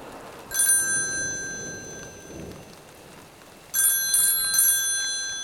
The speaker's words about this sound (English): A phone call awoke Lucy and Desi in the middle of the night.